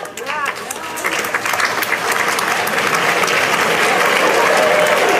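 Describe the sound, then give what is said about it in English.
At a graduation ceremony, parents in the crowd break into applause, a dense wash of many hands clapping that builds steadily louder over several seconds and stays sustained, with a brief voice audible at the very start. “Parents are applauding, graduates are not.”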